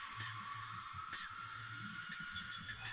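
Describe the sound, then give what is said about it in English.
An Aztec death whistle lets out a harsh, breathy, scream-like shriek that holds steady for the full few seconds, loud and noisy with a rough, wavering edge over a low hum. “Aztec death whistles.”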